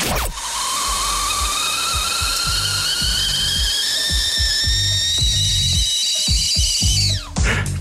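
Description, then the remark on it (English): A kettle whistle, played on a show between segments, sounds continuously in a high, piercing tone that slowly rises in pitch, layered with steady steam hiss and faint clattering thumps, then cuts off abruptly near the end. “You can't tell me you haven't noticed the high-pitched piercing whistle of the kettle you guys play on your show between segments.”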